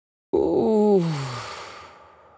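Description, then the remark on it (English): A single long, drawn-out yawn starts abruptly, its voiced pitch sliding downward before fading into a breathy exhale. It is fairly loud, with no talking. “Or yawn.”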